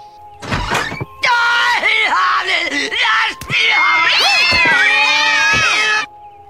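Loud, overlapping cat yowls and caterwauling, evoking the screaming cat lady from The Simpsons, with long wavering pitch sweeps: a short screech first, then a nearly continuous chorus for about five seconds before stopping abruptly.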